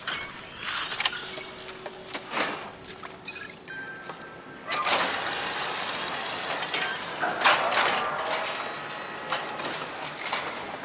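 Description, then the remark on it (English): A mechanical hatch opening to take in a big delivered package, with a motorized whirring and hum punctuated by clicks, ratcheting and a few clunks, loud, with no one talking. “Anyway, I'll open the hatch for the presents.”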